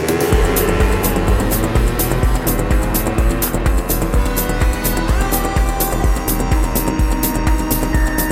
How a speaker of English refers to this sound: Jump on my old-ass Yamaha motorcycle and ride towards the meetup spot.